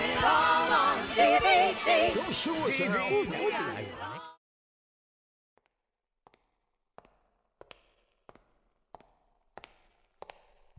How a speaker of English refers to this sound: And why do I hear footstep sound effects? There appears to be a gentleman coming down the hallway.